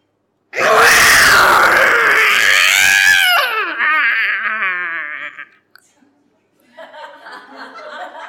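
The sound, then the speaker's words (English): Two cats yowling while mating on a shed roof: a loud, harsh, drawn-out wail that breaks into warbling, wavering cries, then after a short pause another quavering yowl rises. “He flung open the curtains and saw two cats shagging on his shed roof.”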